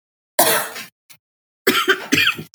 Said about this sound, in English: Wow. Well, you got fucking whooping cough?